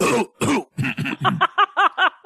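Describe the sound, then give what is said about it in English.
Two harsh, forceful coughs from a woman, followed by a quick run of shorter, throatier coughs that soften and tail off, with no talking. “Adding in that cough was the weirdest moment.”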